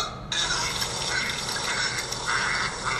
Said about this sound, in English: Oh, you got the vomit and the ducks playing at the same time. Probably a fair call.